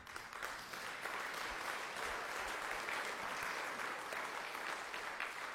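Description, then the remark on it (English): An audience breaks into steady applause, dense overlapping claps forming an even wash of sound that holds at a constant level for several seconds with no voices rising above it. “That doesn't deserve a round of applause. I don't know what does.”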